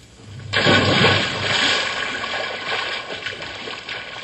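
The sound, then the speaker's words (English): A big splash as someone jumps into an old swimming hole to cool off, followed by several seconds of churning, sloshing water, with no voices. “when we get to the water, all we have to do is just jump in and cool off”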